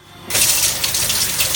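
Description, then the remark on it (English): A tap suddenly turns on and water runs steadily with a bright, hissing splash as hands are washed with soap beneath it after handling meat, fairly loud, with no talking. “Hands washed. Always a lot of soap and water when you handle any kind of meat.”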